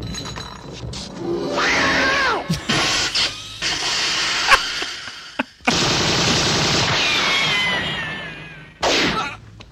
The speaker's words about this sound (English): Cat noise.